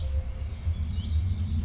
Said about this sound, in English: Birds in the branches nearby